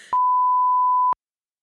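A phone's text message notification beep: one steady, mid-pitched electronic tone held for about a second, loud and clean, starting and stopping abruptly after a brief rustle of noise.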